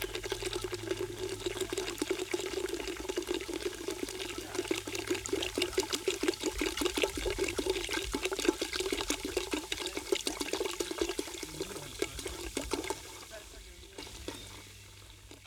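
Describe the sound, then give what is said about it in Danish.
Danish sparkling water pours steadily into a bowl of punch made with white wine, a dense crackling fizz of bubbles running throughout, fairly loud, easing off slightly near the end. “Og det bobler, og det bruser.”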